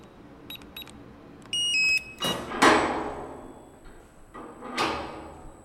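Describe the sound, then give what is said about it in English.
Electronic beeps and chirps from access panels, followed by several different types of heavy security doors sliding and thudding shut one after another, with a whooshing mechanical swish near the end, in an underground data center in a former Cold War bunker. “As you can hear, we have to pass through a number of different types of security doors.”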